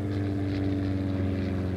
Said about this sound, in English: The plane rattles and bumps down the runway. Soon it's banking upwards into the clouds.